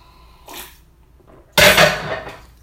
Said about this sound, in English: That was kind of scary. Again, I'm in my kitchen and like some dish just randomly dropped out of nowhere.